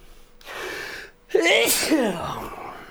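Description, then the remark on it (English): A sharp, loud sneeze, preceded by a breathy inhale and followed by a brief exhaled tail, with no talking. “I always love sneezing.”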